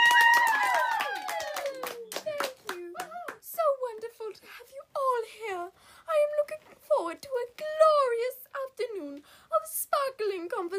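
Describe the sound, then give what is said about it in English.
Scattered clapping from a small audience welcoming President Kit Lepus to open the Spring Thaw Extravaganza, sharp irregular claps rather than a steady roar, mixed with high, excited voices calling and chattering over it. “Please join me in giving a warm round of applause to our very own President Kit Lepus.”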